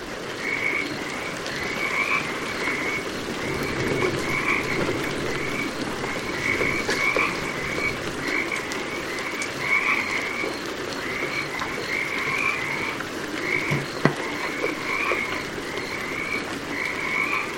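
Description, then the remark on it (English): A dense chorus of Pacific chorus frogs croaks steadily in repeated pulsing trills, many voices overlapping over a constant hiss of winter rain, with no talking. “And when the winter rains come, the frogs can be heard singing its praises.”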